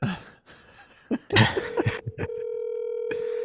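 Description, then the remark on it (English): Telephone dialing tones as a call is placed to guests: a few short throaty bursts and clicks, then a steady, buzzy electronic tone that holds at an even level, briefly interrupted once before continuing to the end. “I'm going to call the gals.”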